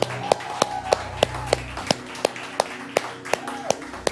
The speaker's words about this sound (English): You got him clapping in the background. So we're gonna clap, we're gonna shout today.